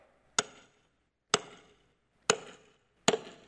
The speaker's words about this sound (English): Every time the hammer struck the nail, I'd imagine the chills went up the spines of everybody that was there, including the Pharisees.